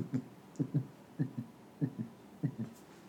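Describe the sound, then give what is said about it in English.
Someone beatboxes a steady rhythm of low, paired thumps imitating a baby's heartbeat, repeating about five times over a few seconds. It is fairly quiet, with no talking. “Sorry, I was trying to beatbox my way into it, this one.”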